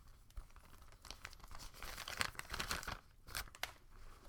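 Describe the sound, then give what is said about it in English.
Crinkling of an empty bag: a few seconds of dry, crackly plastic rustling in irregular bursts, with sharp bright crackles scattered through a steady papery hiss, no voices. “An empty bag.”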